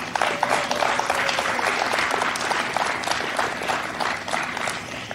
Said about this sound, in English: By the way, I love the one random woman in the background that's acting like she's at a high school cheer competition. It's amazing.